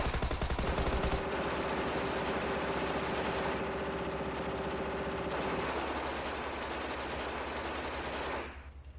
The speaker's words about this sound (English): The moment the door to the restroom closes, three men burst through the front door, pulling out machine guns and spraying the entire room with bullets.